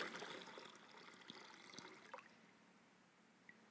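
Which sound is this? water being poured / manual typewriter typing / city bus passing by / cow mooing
water being poured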